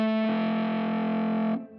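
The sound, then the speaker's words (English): A heavily overdriven electric guitar chord, played through a Recovery Effects Gallows in the Morning pedal that combines double overdrive and reverb, rings out loud and sustained, thick with distortion, then cuts off into a short washy reverb tail. “Gallows in the Morning is a double overdrive. Ooh. And haunting reverb in one pedal.”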